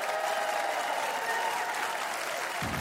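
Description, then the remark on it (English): Steady, dense applause from a large audience on the Huckabee TV show as a band is introduced to perform, a continuous wash of many hands clapping at an even loudness throughout, with a faint sustained tone running beneath it. “Can you clap your hands with me?”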